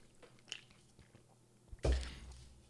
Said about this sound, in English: Well, then we're still kicking these beers, nice IPAs. Come by Chin Chin Chao. Oh boy, let me take a quick sip.